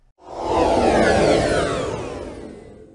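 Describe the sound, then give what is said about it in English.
A sci-fi warp engine effect, played as a break transition, swells up from silence into a loud, broad rushing whoosh with a deep rumbling low end, then slowly fades over a few seconds. No voices. “So there'll be the sound of a warp engine.”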